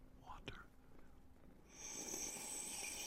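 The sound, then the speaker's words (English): A close-up slurping sip of water, with a soft wet click, then a breathy hiss as the water is drawn in and swallowed, quiet but intimate, right against the microphone. “I have some water. Y'all, give them that water ASMR.”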